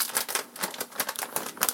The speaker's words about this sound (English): So I'm now going to grab a bag of that Italian blend of cheese. Come back to my pizza here. Reopen that Ziploc top.